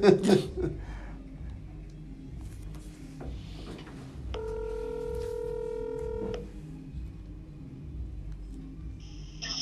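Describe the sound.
A telephone ringback tone sounds for about two seconds, steady and clear, followed by short electronic dialing beeps near the end, all over a low murmur of background voices, as a call is placed to get someone on the phone.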